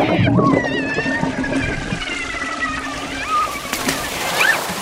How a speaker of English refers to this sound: I'm going to cut into the cell that you are floating in. But please brace yourself because all of that cytoplasm is going to gush out.